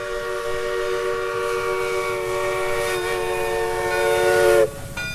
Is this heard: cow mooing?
no